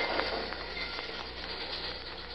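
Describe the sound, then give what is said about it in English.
A train rolls past at a railroad crossing, a steady broad rumble laced with faint rhythmic clacks of wheels over track joints, holding level for the whole stretch with no voices. “Now fly low till the train goes past.”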